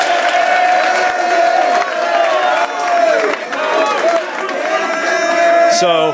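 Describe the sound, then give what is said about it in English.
A large crowd cheers and applauds steadily for students honored for 4.0 grade averages last semester, a loud continuous roar of clapping mixed with shouting voices that holds for several seconds without a break. “That's worth another round of applause.”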